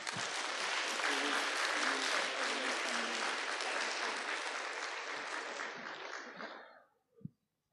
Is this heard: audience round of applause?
yes